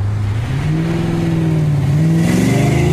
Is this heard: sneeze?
no